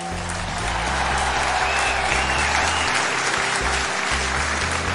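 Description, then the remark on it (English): A loud, sustained eruption of audience applause, dense clapping from a large crowd filling the whole stretch with steady, energetic noise, breaking out as the crowd hears of running into James Lamb. “And the crowd is just like in complete awe, and they, like, as soon as he said that he ran into James Lamb, there's a like just loud eruption of applause and everything like that, and then it quickly like quiets down.”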